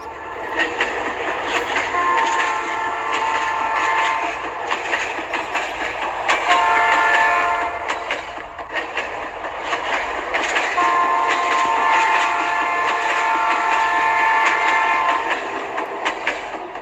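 A train rolls steadily along the tracks with a continuous rumbling clatter, and a few sustained horn-like blasts sound over it. The noise stays loud throughout, with no voices.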